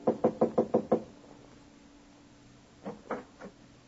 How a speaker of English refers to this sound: Walk down the carpeted hallway. Rap on the panel door.